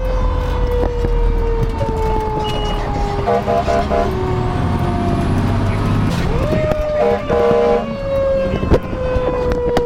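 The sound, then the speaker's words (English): A fire truck drives around a side yard with its siren wailing, the tone sliding up and down over a steady low engine drone, joined by a few short blaring horn bursts. “John takes me around the side yard in the truck, like this morning. This time, though, he throws in something extra.”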